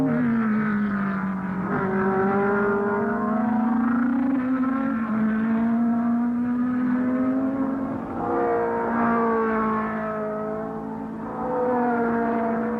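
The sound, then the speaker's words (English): Formula One race cars driven by Jackie Stewart and Mario Andretti in a heat race whine loudly and continuously, their pitch climbing and shifting as they accelerate, with a second surge of revving partway through. No one speaks. “The naturalized American citizen driving a European Formula One car has bridged the continents in one brief flash of speed.”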